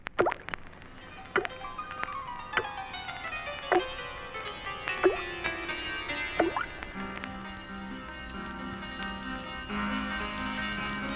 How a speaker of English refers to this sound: Whenever they had a prisoner with information who would not speak, they would tie him prone on a table and gently drip single droplets of water upon his forehead until he spoke. It never failed.